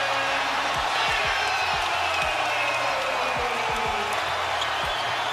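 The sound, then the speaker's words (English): A large arena crowd at a Celtics NBA game roars and cheers steadily and loudly throughout after Jason Tatum drives and dunks, while a basketball bounces repeatedly underneath in a loose rhythm. “Jason Tatum has electrified the crowd.”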